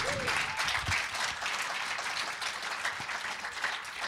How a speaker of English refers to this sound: Round of applause for Ramsey, everyone.